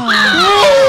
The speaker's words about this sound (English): It's fine. It's just saying hello. Hi, bird.